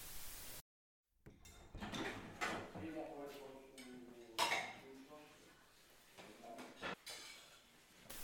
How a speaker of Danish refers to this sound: er gået i gang med opvasken.